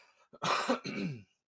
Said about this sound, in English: Just clear my throat for this one.